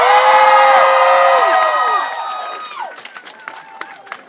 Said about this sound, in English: Scream and shout for all the entertainers. And thank you guys for making the very first Pride a success.